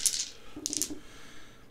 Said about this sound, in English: That'll give you an extra damage die, so roll me 5d6. I like these big guys. You want to just do the Borderlands dice? I like them. The 6 is a very happy, celebrated claptrap.